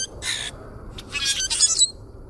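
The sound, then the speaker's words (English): Harsh, raspy grackle squawks burst out in a few rough calls, one early and a noisier run near the end, fairly loud over a low background rumble. “The sounds of grackles may not be music to our ears, but they sure do get your attention.”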